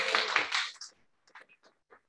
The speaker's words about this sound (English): So without further ado, please give a big round of applause for Dr. Joe.